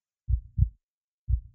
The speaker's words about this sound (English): thought it was a large tanker ship motoring by his home on the Washington coast, but the sound was actually his own heart beating.